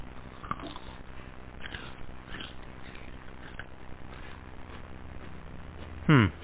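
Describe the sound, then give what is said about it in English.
Soft crunching and mouth clicks from someone biting and chewing a crunchy chocolate bar, scattered irregularly, ending in one louder, sharper crunch near the end. “Oh, and it's going to be all crunchy and pops in your mouth like a firecracker.”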